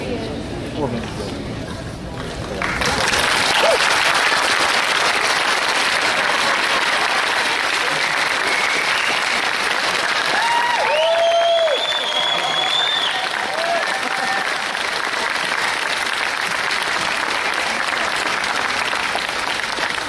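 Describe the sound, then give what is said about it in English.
A crowd at Kansas City Comic Con bursts into sustained applause and cheering as Sean Astin is introduced, a dense wash of clapping that swells suddenly after a couple of seconds and holds loud throughout, with occasional whistles and shouts rising above it. “Good night there, good crowd.”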